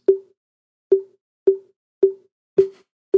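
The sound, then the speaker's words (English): A sound effect of water drips: six short, resonant plops at a fairly steady, unhurried pace, each with a quick decay, on a silent background with no talking. “It sounds like rain dripping.”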